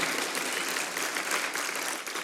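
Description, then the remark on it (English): An audience claps steadily, a dense, even crackle of many hands sustained from start to finish at moderate volume, with no voices over it. “You can clap. Go ahead.”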